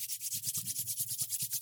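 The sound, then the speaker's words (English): Hands rubbing briskly together, a steady back-and-forth hiss of skin on skin pulsing about six times a second, fairly soft, with no voices. “Then you're going to rub your hands together.”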